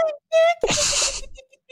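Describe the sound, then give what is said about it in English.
A cat yawns: a couple of brief high mewing tones, then a long, breathy, wide-mouthed exhale that slides downward and trails off into a soft squeak. “The cat yawns.”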